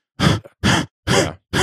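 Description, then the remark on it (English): A voice imitates heavy, labored breathing: four loud, forceful gasping breaths in a quick, steady rhythm, each rough and slightly grunting, with short silences between them, mimicking breathing while hauling heavy bags of dog food up an incline to a bait site. “bringing in multiple bags of dog food and you're baited on an incline, and you have to get either up to the bait or you're hauling something out heavy to the truck, it's really easy to let your breathing get out of control.”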